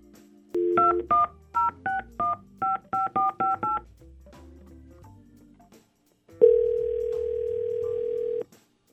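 About ten quick touch-tone beeps as the Y100 radio hosts dial a phone number, then a short pause and a steady, loud dial tone humming for a couple of seconds. No voices.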